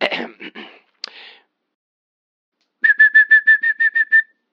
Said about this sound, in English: Next, the yellow-tailed black cuckoo from Australia, whose song can range from soothing to rather eerie.